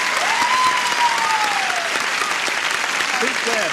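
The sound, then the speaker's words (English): A burst of brisk, sustained applause from a large show audience welcoming Jamie Lee Curtis, loud and steady throughout, with a faint whistle-like tone gliding through early on. “Now, you will just give a little brisk applause, and you will applause as you welcome this new kid on the block, Jamie Lee Curtis.”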